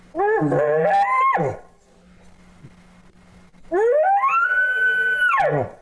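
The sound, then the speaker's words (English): Two drawn-out, moaning bull-like bellows made by a human voice imitating a lazy bull call from bed, each rising then falling off, separated by a quiet pause with a low steady hum underneath. “Why don't I give a lazy call from my bed, right?”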